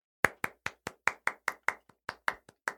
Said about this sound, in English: I wasn't clapping too because I was soaking up the clap. He's clapping for us.